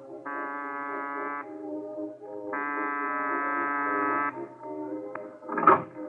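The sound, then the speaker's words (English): The side door bell of a boarded-up Museum of Murder at a roadside amusement area rings as two long, harsh buzzing tones with a short pause between them, followed by a brief clatter after they stop. “There's a bell here, this side door.”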